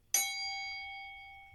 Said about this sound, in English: So here we go. We're dinging the bell. Here we go.